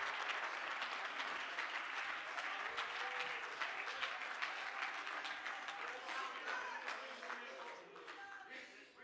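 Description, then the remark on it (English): An audience claps hands unto Jesus in sustained, dense applause, steady and fairly loud throughout, with scattered voices and cheers mixed into the clapping before it tapers slightly at the end. “If you believe that, clap your hands unto Jesus tonight.”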